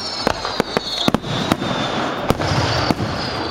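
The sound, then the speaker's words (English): Fireworks going off in a quick, irregular run of sharp cracks and bangs, about nine in a few seconds, over a steady hissing crackle with no one talking. “As if there haven't been enough fireworks on Earth this month, following the 4th of July celebrations in the States, the stars themselves are providing their own light show.”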